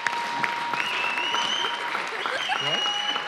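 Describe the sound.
A crowd applauds steadily for a few seconds, a dense wash of many hands clapping at even loudness, with a few voices calling out faintly underneath.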